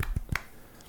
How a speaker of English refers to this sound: Second golf clap of the show. Yes. It's well done.